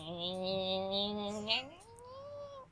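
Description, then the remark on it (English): A cat gives a long, low, steady growl that suddenly rises in pitch into a drawn-out yowl, fairly loud, with no one talking over it. “If anybody has cat experience, it's hard to ignore that.”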